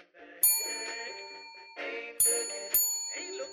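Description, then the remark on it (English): A bright bell dings three times, one strike, then two more in quick succession, each ringing on with a long shimmering decay over a busy, murmuring background. “Is that the front bell? Clancy looks around the room. Or is the microwave finally working?”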